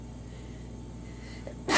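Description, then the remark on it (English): A single abrupt, loud sneeze bursts out at the very end, after a stretch of low, steady background hum with no talking. “Bless you.”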